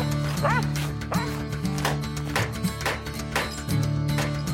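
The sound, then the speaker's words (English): A dog barks repeatedly in a barn in short, sharp bursts, roughly one or two per second, loud, over a steady low droning background. “Come on, dog.”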